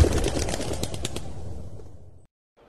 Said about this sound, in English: As you're semi-nude running through the forest, this greatly disturbs all the animals. A large flock of birds flies up.